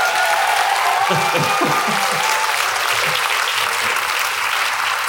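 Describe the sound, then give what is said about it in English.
Steady, loud applause from a large audience welcoming TV and film actors to the Starfest stage, a dense continuous crackle of many hands clapping, with faint voices and cheers mixed in throughout. “Can we have a round of applause for these fabulous gentlemen, please?”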